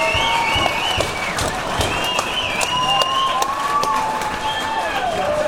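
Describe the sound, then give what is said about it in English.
A crowd applauds the Houston Astros baseball team steadily, dense clapping running the whole five seconds at an even loudness, with high whistles and cheering voices gliding over the top. “Let's give it up for the Houston Astros.”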